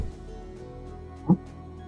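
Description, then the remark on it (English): A single loud metallic knock at a door rings out against a steady low droning background, one sharp hit that stands out clearly before the hum carries on. “suddenly you hear a loud metallic kind of knock at the door.”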